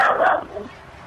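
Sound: dog barking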